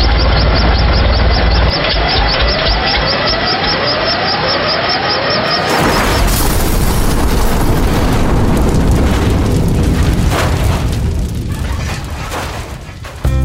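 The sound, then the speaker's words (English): A loud helicopter crash sound effect, a helicopter slathered with maple syrup going down: a strained, pulsing engine whine for several seconds, then a sudden heavy impact that bursts into a sustained roaring, rumbling explosion of noise. “Our chopper is slathered with maple syrup. We're going down!”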